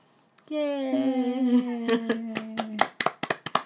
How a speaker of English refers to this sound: Yay! Are you clapping? You should be clapping with us.